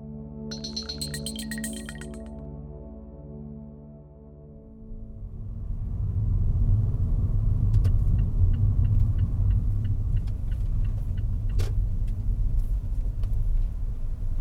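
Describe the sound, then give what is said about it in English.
A steady electronic tone gives way to the low rumble of a car rolling to a stop, its engine and road noise holding steady, with a few faint clicks and no voices, as the driver pulls the handbrake on. “Rolling the car to a stop, she pulled the handbrake on.”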